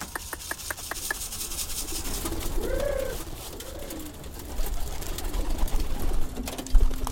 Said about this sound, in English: back at the pigeon coop in his old hutong, ready for another day in the express mail van. He's already fed his birds and released them. Now he's calling them home.